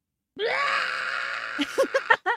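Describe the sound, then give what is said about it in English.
A man's voice imitates the growl of a Mugatu: one long, strained, roaring scream sustained for over a second, then breaking into a few short, choppy grunts. Loud, with no other talk. “That I think I do a pretty good Mugatu growl.”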